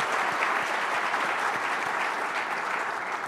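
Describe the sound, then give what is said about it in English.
A crowd at an AWS life sciences session claps steadily for a few seconds, a dense, even wash of applause at moderate loudness with no voices standing out. “I'd like to give them a round of applause for that.”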